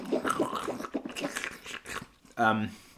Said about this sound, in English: Listen to a sip. Yeah, and swish around in our mouths, and it's all.